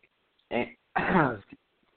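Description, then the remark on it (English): Two harsh, choking coughs, a short one followed by a longer, strained, voiced one, from someone sputtering after a sip of water went down the wrong pipe. No talking, just quiet around the coughs. “No, I just took a sip of water, and I miscalculated.”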